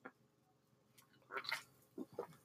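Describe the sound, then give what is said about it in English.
Someone sips Pepsi from a can: a few short, wet slurping bursts, quiet and intermittent, with no talking. “You're drinking Pepsi in the middle of this.”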